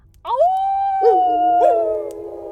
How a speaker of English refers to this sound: The children of the night, what music they make. I had no idea there were so many wolves in this city.